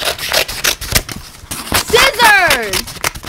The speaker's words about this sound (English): But yes, that was scissors cutting paper